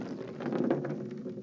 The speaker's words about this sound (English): Can you roll the dice for us to see what we land on? Okay, so we're going to roll the dice. Right. Okay, here we go.